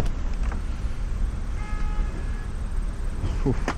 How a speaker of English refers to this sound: Whew. What a honking.